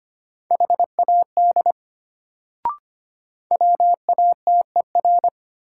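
Morse code tones at 25 words per minute, sending practice sentences made from the top 100 words: a single steady mid-pitched beep keyed in quick short and long pulses, two bursts separated by a gap with a brief click between them.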